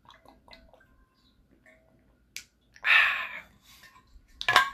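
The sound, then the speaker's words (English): Someone drinks water: small clicks and container handling noises, a louder sloshing swallow in the middle, then a sharp click near the end. No one speaks. “Let me drink some water, because just thinking of Utah fucking makes me thirsty.”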